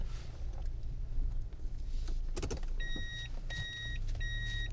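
A car being parked on arriving home: a steady low engine rumble inside the vehicle, a brief rustling clunk, then three evenly spaced, bright electronic beeps, like a parking warning.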